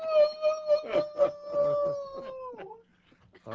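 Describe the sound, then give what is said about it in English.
A man's voice imitates a dog's howl, a sustained wavering tone about two and a half seconds long with pulsing rises, falling off at the end, fairly loud. “She especially enjoyed the howling sounds.”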